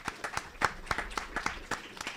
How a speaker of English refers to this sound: So how about a round of applause for our great panel members?